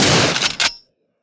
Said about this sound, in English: get in here and shoot David Blaine in the motherfucking face